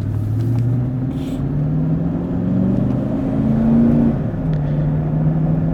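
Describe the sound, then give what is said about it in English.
A car engine rumbles steadily, its low hum rising and shifting in pitch as the vehicle pulls away from an intersection in a string of traffic and gathers speed, with no voices. “There's a whole string of cars here. Here we go.”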